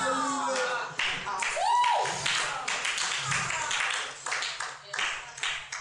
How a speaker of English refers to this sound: If you're clapping, don't let those who are not clapping stop you from clapping excellently.